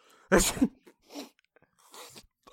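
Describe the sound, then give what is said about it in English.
One loud, sharp sneeze from a person with a bad cold bursts out, followed by a few softer, breathy sniffs and exhalations trailing off afterward. “God bless you. Excuse me.”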